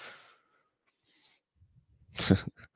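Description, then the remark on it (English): Dogs playing roughly: a few soft huffs and low grumbly rumbles build into a sudden loud snorting burst, followed by quick short snuffles. “I mean, these dogs are gonna have a fight here in a minute. They get rowdy sometimes, man.”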